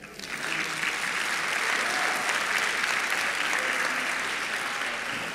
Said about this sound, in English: If you agree with me, can you clap?